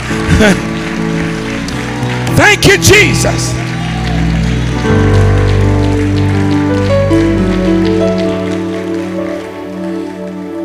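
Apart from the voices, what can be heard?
audience clapping hands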